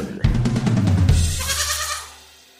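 A single drawn-out goat bleat, loud, lasting about two seconds with a wavering, quavering tone before trailing off, with no other sounds around it.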